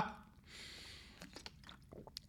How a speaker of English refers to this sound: I just took a drink of water.